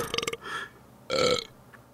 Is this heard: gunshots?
no